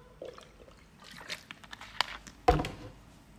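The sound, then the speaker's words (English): Quiet sips of water with soft slurping and wet mouth sounds, ending in a sharper gulp-like click and swallow. No one speaks. “Sipped water.”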